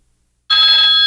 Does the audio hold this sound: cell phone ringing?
yes